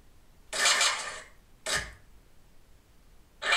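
Sound effects from the skateboarding video game Tony Hawk Pro Skater: a long, bright scraping burst, then a shorter hissy burst with a low thud, and another burst cutting in at the end, with no voices.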